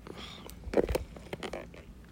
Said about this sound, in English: Let me take a sip.